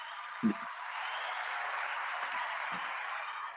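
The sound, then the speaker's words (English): A crowd applause sound effect plays as a steady, dense wash of clapping throughout, with a brief low thump near the start and a couple of softer low knocks later. No one speaks. “We can go to the crowd too if you like.”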